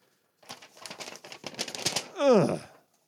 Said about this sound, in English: Oh, I felt it. I'm boring holes right now through the paper.